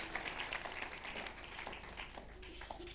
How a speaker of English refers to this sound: Oh, the faithful ones are clapping. The honest ones are clapping.